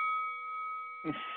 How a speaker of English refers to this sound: That was the kickboxing bell.